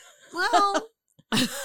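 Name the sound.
cough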